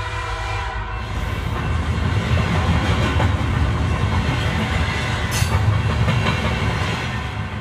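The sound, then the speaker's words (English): A train rumbles and clatters steadily along the rails, loud, with a brief horn-like tone at the start and faint rhythmic clicks running through the continuous roar, carrying a patient in a straitjacket, accompanied by guards, from France to an asylum in Holland. “They transfer Theo to that asylum by train, in a straitjacket, accompanied by guards.”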